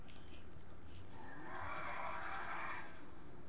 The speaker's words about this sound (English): Hey, stop driving off. Let me get in the car with you. Oh, you want to get in the Batmobile? Okay.